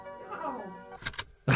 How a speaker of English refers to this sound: Just stop banging on the door.